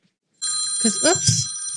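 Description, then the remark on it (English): A phone rings with a steady, bright electronic trill that starts abruptly and keeps going, fairly loud, while someone speaks over it. “Turn my phone off.”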